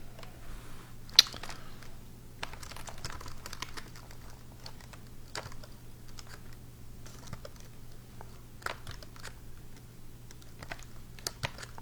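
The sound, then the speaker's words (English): Irregular clicking and tapping of keys on a computer keyboard, fairly quiet, with a few sharper louder strikes over a steady low hum; no one speaks. “I hate this keyboard so much.”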